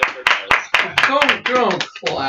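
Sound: hand clapping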